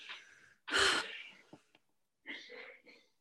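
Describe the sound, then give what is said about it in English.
A sharp, loud burst of coughing in the background of a recording made at home is followed by a couple of short throaty catches, then a softer, raspier cough bout near the end, with no talking. “Sorry if you can see hear coughing happening in the That's background.”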